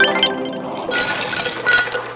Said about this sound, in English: Ice cubes? Ice cubes? Oh, for real? There are ice cubes coming out of the pool jets.